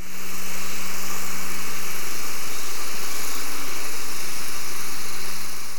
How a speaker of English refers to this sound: Can you give me a hint? It is man-made noise. Is it an engine, like a ship sound? Yes, it's a ship noise. It's a research vessel at about 14 kilometers from the hydrophone.